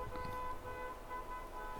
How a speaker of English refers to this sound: What the fuck? I don't know if y'all heard that, but someone is, like, honking like crazy outside my fucking yard.